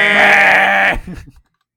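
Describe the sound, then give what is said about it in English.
A voice imitates a shot clock buzzer, made in someone's face after counting down the shot clock while guarding them: one loud, nasal, buzzing tone held for about a second, then it breaks off into a few short breathy trailing sounds. “No, you just make a big buzzer in their face.”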